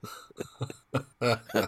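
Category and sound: human body sound, cough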